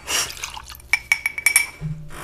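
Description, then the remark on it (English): Tequila is poured into a glass: a brief splashy rush, then a few quick gurgles and ringing clinks as the glass fills to the rim. “Ooh, to the rim.”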